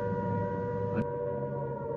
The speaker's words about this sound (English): You can hear the sirens just dying away in the distance now.